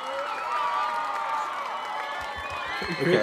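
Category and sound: sound effect, applause sound effect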